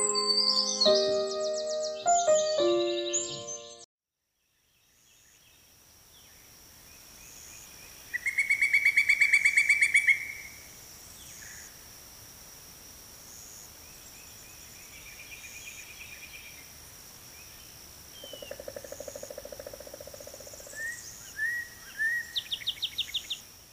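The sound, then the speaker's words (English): Outdoor birdsong: a pileated woodpecker, a large bird, drums and gives loud, rapid call series, with other chirps and a steady high insect drone behind, following a few seconds of music and a brief silence. “You just heard the delightful drumming and the wonderful warbling of the pileated woodpecker.”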